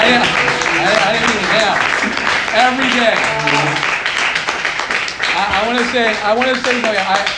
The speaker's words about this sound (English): We could give a standing ovation and a clap